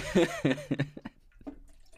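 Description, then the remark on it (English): A voice makes a quick run of throaty glugging sounds, imitating someone gulping down water during a water break, loud for about a second before trailing off into faint murmurs. “Oh, I need a little water. Yeah, let's do a water break.”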